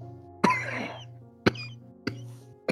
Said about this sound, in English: See him begin to cough from how raspy his voice is.